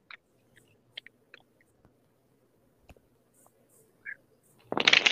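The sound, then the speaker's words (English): Aquarian Tarot deck cards being shuffled for a card reading: scattered soft taps and clicks of cards being handled, then a dense rushing riffle at the end. No one speaks. “All right, let me just get the cards shuffled.”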